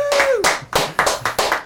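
A short burst of hand clapping, about five loud, evenly spaced claps in a steady rhythm, with a brief trailing voice sound at the very start, given as a round of applause for a full day spent playing video games such as Watch Dogs.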